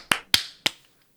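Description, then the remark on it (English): Three sharp, crisp sync claps in quick succession, roughly evenly spaced, each ringing briefly before silence; no voices accompany them. “All right, clap, sync, 3, 2, 1.”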